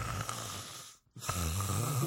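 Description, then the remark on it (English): A voice imitates the loud, rasping snoring of a man asleep in his seat with his head tilted back, two long drawn-out snores separated by a brief pause, harsh with a rattling, throaty texture. “And I look over and he's just like with his head back and tilted back, just like snoring loud as fuck.”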